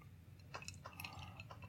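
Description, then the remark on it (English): A quiet sip of whiskey, with a dropper's worth of water added, from a glass: a short run of soft wet slurping clicks and faint liquid sounds over about a second, with no talking. “So try it now. Take a sip.”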